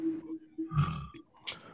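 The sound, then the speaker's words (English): A person makes a short, gravelly imitation of a roar, a low rumbling growl lasting under a second, followed by a breathy hiss. “I've never seen you, I've never seen you like stutter before when you had to do the roar.”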